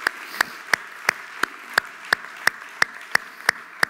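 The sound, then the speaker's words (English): An audience claps together in unison, clapping to God: a dozen crisp, sharp claps on a steady, brisk beat of roughly three per second, with a soft hum of crowd noise in between and no talking. “If you need God, could you put your hands together and clap to him?”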